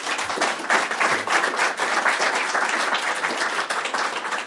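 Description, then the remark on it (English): A crowd applauds two men after a panel discussion, a dense, loud wash of many hands clapping that holds at an even level for several seconds without any voices. “And hey, big hand of applause for these two gentlemen, please.”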